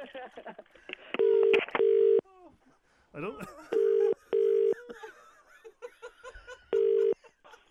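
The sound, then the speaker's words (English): On FM 104's Strawberry Alarm Clock radio show, a phone number is dialed to ring a caller back after she hung up: five short, steady touch-tone beeps in uneven pairs, each loud and clear, while people chuckle and talk quietly in the gaps. “Quick, get her back. She's hung up. I'll ring her back.”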